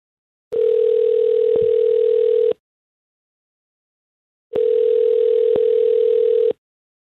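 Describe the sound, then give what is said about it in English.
A telephone ringback tone sounds twice as hosts at radio station Star 101.3 call a listener, Sandra; each steady electronic ring lasts about two seconds with a two-second pause between, loud and clear with no talking. “So let's call Sandra and see what she thought of the date.”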